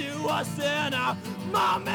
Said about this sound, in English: Screams.